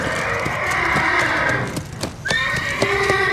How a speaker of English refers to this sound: No offense, Mr. Horse.